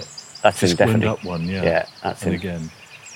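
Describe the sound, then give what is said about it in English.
A firecrest sings thin, very high-pitched notes faintly in the background in a wood, partly masked by a person talking. “That's the firecrest. He'll sing from there.”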